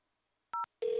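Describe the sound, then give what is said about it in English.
A single short telephone keypad tone beeps once as 1 is pressed on a call to Taco Bell, a clean dual-pitched blip, then a steady, lower-pitched phone-line tone starts up and holds. No voices. “If you would like to speak with someone regarding your recent visit, please press 1.”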